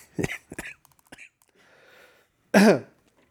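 A woman coughs: a few short, dry bursts, then a louder, harsher cough that trails off in a strained vocal tone, with brief quiet gaps between them.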